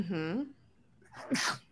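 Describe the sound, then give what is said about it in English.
A single sneeze: a drawn-out voiced 'ah' builds up, then after a brief pause comes a sharp, noisy burst, moderately loud and heard alone. “Bless you.”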